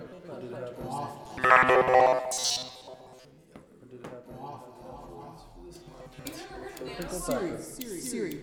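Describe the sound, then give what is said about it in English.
A brief electronic phone ringtone chimes near the start, bright and fairly loud for about a second, while people talk around it before and after. “Did this just go off? Ringtone wise?”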